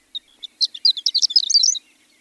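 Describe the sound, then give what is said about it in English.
A male horned lark's high, tinkling song, sung in flight about 100 feet up while hovering and circling over an open landscape of short grasses: a few thin introductory notes, then a rapid, accelerating jumble of bright chirps and twitters, fairly clear against a quiet background. “Our bird, a male-horned lark, is 100 feet in the air, hovering, wings fluttering, circling against the blue sky.”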